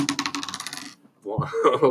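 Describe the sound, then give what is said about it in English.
A bright metallic jingle and clatter of keys fumbled and dropped while getting into a car, hitting a hard surface for about a second, followed by a short pause and then a voiced vocal reaction. “You fumble your keys as you get in your car. Drops the keys.”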